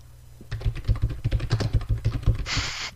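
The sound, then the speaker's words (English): Rapid, uneven clicking of keys on a computer keyboard, fairly loud, with a low hum underneath and a brief burst of hiss near the end. “I'm going to start typing so you can speak.”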